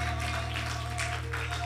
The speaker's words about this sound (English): Come on, why don't we give him one more great hand clap of praise in the house.